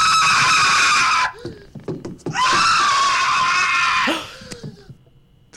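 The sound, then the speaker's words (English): Two long, piercing, loud screams from the film Home Alone, each held for about two seconds, separated by a brief pause filled with a few faint clatters and breaths. “The best scream of any movie.”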